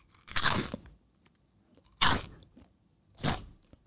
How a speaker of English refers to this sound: But here I am about to crunch a chip.